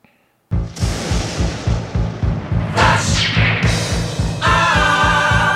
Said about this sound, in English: The thunder and the lightning tells us that it is time for Flash Answers.